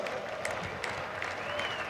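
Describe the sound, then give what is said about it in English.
A crowd in Los Angeles claps steadily for a National Baseball Hall of Fame inductee, a dense wash of many hands applauding at an even level with no clear individual beats, a faint voice or whistle tone drifting underneath. “That deserves a round of applause as well.”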